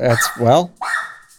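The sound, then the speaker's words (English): A pet dog barks three times in quick succession, loud, each bark a sharp, slightly whiny yelp with a short gap before the last. “It's my dogs are really mad about AGDQ ending as well.”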